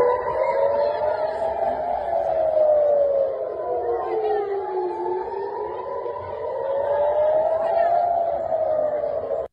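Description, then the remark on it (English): Air raid sirens in northern Israel wail steadily, their tones slowly rising and falling, with several sirens overlapping out of step. A constant murmur of background noise runs beneath the loud, continuous wailing. “There are videos circulating online of sirens going off like this one.”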